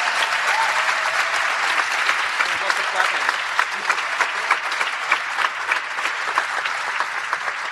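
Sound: audience round of applause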